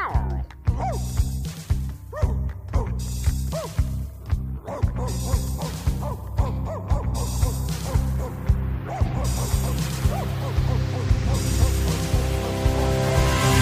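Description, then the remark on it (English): A dog barks over and over in a steady, insistent rhythm, dozens of sharp barks, continuing for the whole stretch against a constant low background hum. “What are you barking at? What do you see?”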